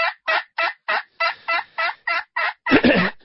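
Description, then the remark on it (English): A slate turkey call with an aluminum top and slate soundboard imitating hen yelps: about ten evenly spaced, raspy yelps in a steady rhythm, clear, ending with a louder, rougher burst. “And you're simply using what a hen would sound like? Yes. Those calls start with basically a yelp.”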